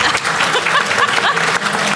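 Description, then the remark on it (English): An audience breaks into light applause, a steady patter of many hands clapping at once that holds an even level throughout, with no voices over it. “Light clap from the audience goes up.”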